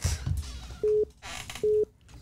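A phone line's busy tone after a caller hangs up on the live call-in show Hoodstocks: two short, steady electronic beeps with even gaps, over faint line hiss and background noise, with no one speaking.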